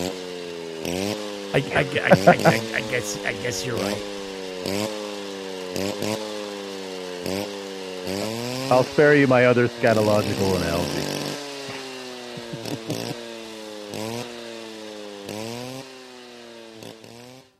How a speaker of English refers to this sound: Chainsaw sounds terrific. Oh, thank you. Through the headphones. I'm glad you were able to hear that.